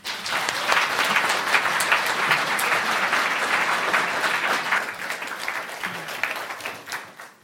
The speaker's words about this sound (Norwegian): Den næste time skal hun give os en indføring I India for Dummies, så giv hende en varm applaus.